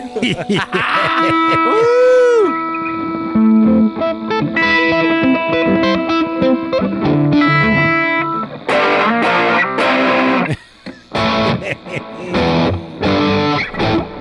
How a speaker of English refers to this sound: I was glad to be here to help him promote his guitar, to watch him play his guitar, to trade some licks, and ultimately to get me a couple guitars. It's starting to sound like Guitar Center in here.